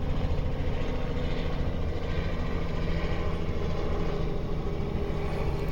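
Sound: helicopter flying overhead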